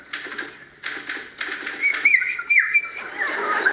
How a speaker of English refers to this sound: What's the whistle? How can I work if you're going to whistle?